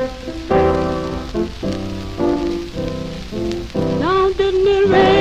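An old 1940s gospel choir recording: voices sing together in strong, rhythmic held chords over a steady background hiss, then a higher voice swoops upward and sustains near the end.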